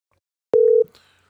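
A phone call being dialed: one loud, steady electronic beep lasting about a third of a second, with a sharp click at the start and brief faint noise after it, with no voices.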